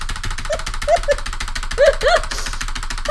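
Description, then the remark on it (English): Rapid, relentless clicking of game controller buttons as the jump button is mashed continuously for about three seconds, with a few short mid-pitched electronic blips popping up over the clatter. “When you machine gun your buttons like that.”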